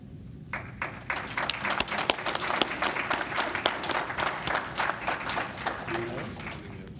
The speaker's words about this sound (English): Please rise for a group applause.